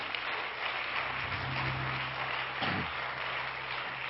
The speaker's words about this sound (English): Everyone else, why don't we give our guests a good hand clap tonight?